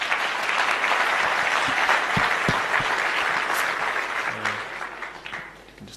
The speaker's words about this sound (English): And thank you. Round of applause for Sun Exchange.